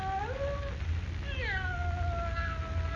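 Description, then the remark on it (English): A cat meows plaintively somewhere in a musty, dark room in two long, drawn-out, wavering cries, the second rising sharply before trailing off, heard clearly with no voices, over a low steady background rumble. “With a cat meowing plaintively somewhere in the musty darkness of the room, Jimmy begs Perry White not to call Lois.”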